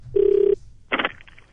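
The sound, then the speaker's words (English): A single burst of a telephone ringing tone on an outgoing call to a random person, a steady buzzing purr lasting under half a second, followed by a short rough clatter like the line being picked up. “This is where I phone up a random person, ask them a ridiculous bunch of questions, and see how long they hold on the line for.”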